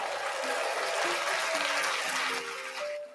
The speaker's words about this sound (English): Yeah. You know, sometimes it's good to have applause. Whether you deserve it or not.